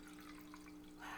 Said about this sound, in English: I'm pouring more wine, so sorry if you hear it. Did you hear that? I can pour it loud.